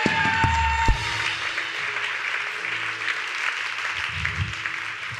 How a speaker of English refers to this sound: Can somebody give the Lord a clap?